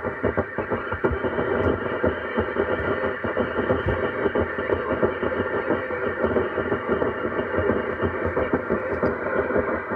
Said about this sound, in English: Radio helicopter. Fucking radio helicopter, listen to that.